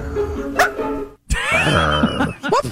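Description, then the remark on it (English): A man's voice imitates a wolf, yipping at a body of water. He gives loud, high-pitched yips and yelps with bending pitch, broken by a brief pause partway through, then a couple of sharper yips at the end. “I want to hear the wolf guy again because that yip is particularly good.”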